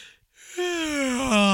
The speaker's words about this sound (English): Take a deep breath there. Dude, gulp it up.